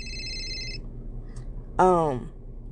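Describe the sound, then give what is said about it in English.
A mobile phone gives a short, steady electronic ringing tone that cuts off after under a second. A brief pause follows, then a person starts to speak. “Sorry, my phone's blowing up.”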